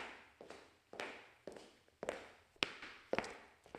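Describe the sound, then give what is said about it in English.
Steady footsteps approach at an even walking pace, each step a soft thud, followed by a few sharper raps of someone knocking on a door, then the door opening, as sound effects for a radio play. No voices. “I hear footsteps. I hear someone walking. Someone is knocking, knocking on a door. I hear someone knocking on a door.The door is opening.”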